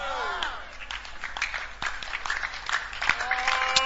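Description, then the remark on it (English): An audience claps steadily throughout, a dense patter of many hands, with voices calling out faintly underneath and the clapping building slightly toward the end. “Father, those who are clapping, may some angel bring some favor.”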